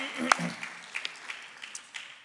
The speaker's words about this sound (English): and a round of applause for